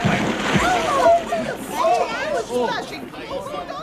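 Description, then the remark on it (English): Water splashes and sloshes steadily as something wades across the river Jordan, while voices talk and call out over the top of it. “We're crossing Jordan, just like Joshua and the Ark.”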